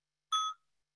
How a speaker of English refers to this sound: So let's have a sound of the bell